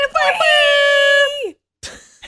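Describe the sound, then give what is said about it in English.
A single loud cat screech sound effect: a high, sustained, strained wail lasting over a second that bends downward at the end, followed by a brief breathy rustle after a moment of silence. “Yeah, just a cat screech in 2019.”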